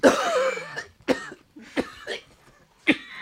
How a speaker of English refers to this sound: Hey, oh my, if you're going to cough, at least cough like this. So you're not blowing out the... Try for me. You're lucky that was just a cough.